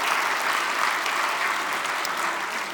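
A crowd applauds steadily, a dense wash of many hands clapping at an even, fairly loud level throughout, with no voices breaking through.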